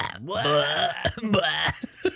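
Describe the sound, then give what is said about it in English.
Several people let out long, loud, croaky burps at the same time, the belches overlapping and stretching for about two seconds before trailing off into short guttural bursts. “Let's burp together.”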